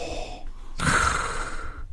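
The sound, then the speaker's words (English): An audible breath taken by a person: a soft noisy intake that swells sharply and then trails off over about a second, heard alone with no talking. “That wasn't an impression, y'all. That was just me taking a breath.”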